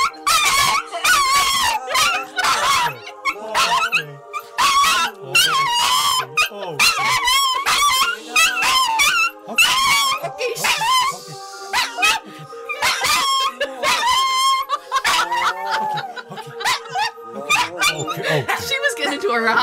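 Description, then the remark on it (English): A dog howls and barks loudly and nearly nonstop, with long wavering howls broken by sharp yelping barks and whimpers repeating throughout. “The howling good is back.”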